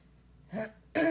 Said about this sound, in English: We have me clearing my throat.